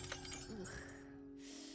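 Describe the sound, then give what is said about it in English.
A glass mirror that was leaning against a shop counter is knocked over and shatters on the floor, a quick crash followed by a brief tinkle of ringing fragments, fairly quiet, with no one speaking. “It smacked onto the floor and...”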